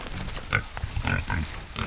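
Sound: pig snorting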